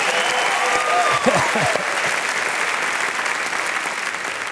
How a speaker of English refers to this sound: Oh, if you can give Jesus that clap, let Him hear it stronger from you. Come on.